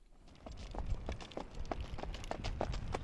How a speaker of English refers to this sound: On a cold, snowy day last week, some trainers were out at Tioga Downs on the track exercising the horses.